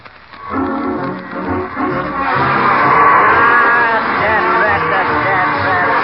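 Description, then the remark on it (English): A vacuum cleaner, just reassembled with the spring from a phonograph put inside it, is plugged in and switched on as a comic sound effect, bursting into a loud, sustained whirring roar laced with wobbling, warbling tones that swell and hold for several seconds. “I put the spring out of the phonograph into the vacuum cleaner.”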